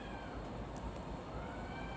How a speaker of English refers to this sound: Every night outside my house, you can hear a cat screaming. And one time someone told me that they scream like that because of like the shape of their reproductive organs. And it really hurts, apparently.